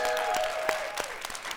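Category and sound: crowd, audience applause and cheering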